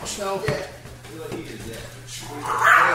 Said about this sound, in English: Wow, you got one of those tiny yip-yip dogs. She's awesome, though.